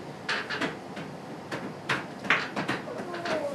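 A chair is dragged away from a window to the other end of a room, producing a series of irregular scrapes, bumps and knocks, with a short squeak partway through.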